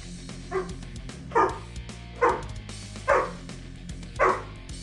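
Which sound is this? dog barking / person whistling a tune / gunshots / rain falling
dog barking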